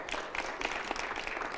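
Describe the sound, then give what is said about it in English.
A church audience claps steadily during a pastor's sermon, a dense, continuous patter of many hands at moderate loudness with no voices rising above it. “Some of y'all don't want to clap, but just keep on living.”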